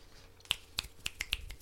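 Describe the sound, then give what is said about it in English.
Finger snapping in place of applause, about six crisp snaps with a bright, sharp attack, coming in a loose, uneven rhythm with no voices. “Jazz claps.”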